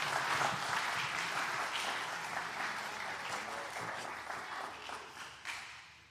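A church audience applauds steadily as a speaker comes up to deliver the Word, dense clapping at a fairly loud level, holding for several seconds before thinning slightly toward the end.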